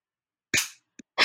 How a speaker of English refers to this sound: Ready? Shall we clap? Yes. So we do the clap thing.